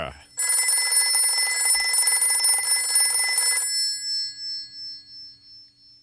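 A loud old-fashioned telephone bell rings in Dial A for Adventure, one continuous metallic trill for about three seconds, then its tone lingers and fades away in pulsing decay.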